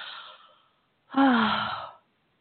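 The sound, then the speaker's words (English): A person yawns audibly: a soft breathy intake trails off, then after a brief pause a long, loud voiced exhale with a falling pitch fades away. No talking. “And I yawn to release the energies from myself and others.”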